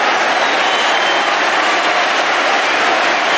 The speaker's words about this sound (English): Letizia even applauds himself. What a sporting gesture. The whole ground is doing likewise.